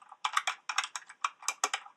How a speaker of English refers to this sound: Yeah, there's one here of a keyboard as well. Take this one out.